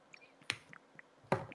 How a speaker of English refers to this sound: Hold on, man. Take a sip of my drink.